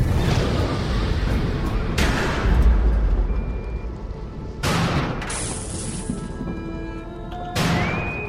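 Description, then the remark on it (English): Repeated bomb explosions strike a ship with no engines or shields: four heavy, booming blasts at uneven intervals, each leaving a deep rumble and crackling debris, with thin ringing metallic tones lingering afterward. A bug bomb has hit the ship. “We've got a bug bomb.”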